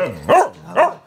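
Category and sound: animal, dog barking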